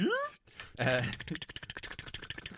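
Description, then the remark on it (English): Michael Winslow's vocal impression of a microphone: a man's voice mimics a microphone's hum and buzz, a quick rising whoop, then a loud buzzy drone breaking into rapid fluttering pulses, fairly loud, with no other sounds. “microphone humming sounds.”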